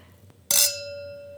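A single bright clink of Riedel wine glasses touching in a toast in a hotel, followed by a clear, high ringing tone that slowly fades over about a second. No one speaks.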